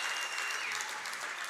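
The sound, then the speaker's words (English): A church audience claps together during a sermon in a steady, dense wash of applause that stays loud and even for the whole moment, with no voices rising above it. “Let's clap like it.”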